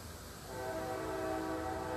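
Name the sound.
passing train with horn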